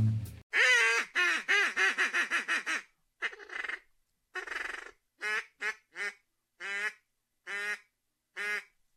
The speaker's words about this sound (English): Whew, a little rusty there on a duck call. Been a whole year.